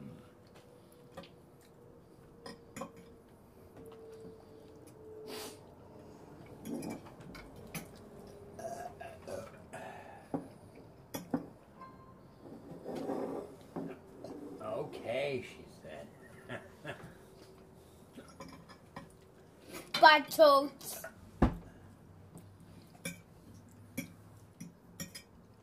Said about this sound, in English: I'm eating your mac and cheese.